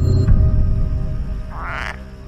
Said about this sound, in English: Are you making that noise? What noise? That noise. That's a frog.